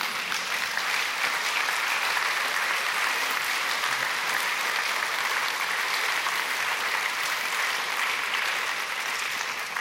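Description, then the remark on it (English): An audience claps together in sustained applause for the wives and children of the elders, a dense, steady crackle of many hands that holds at an even, fairly loud level throughout, with no voices rising above it. “And these are the ones, the elders are fine, but these are the ones you should really clap for, because they are...”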